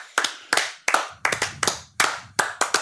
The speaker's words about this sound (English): your clap sounds sarcastic. If a clap can sound sarcastic, you figured it out.